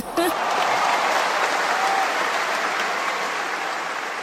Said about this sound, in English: Yes, that deserves an applause. Amen.